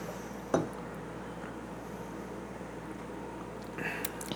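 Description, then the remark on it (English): A single bright clink of wine glasses touching in a birthday toast, short, followed by quiet room tone and a faint light clatter near the end. “Cheers. Cheers. Cheers. Happy birthday,”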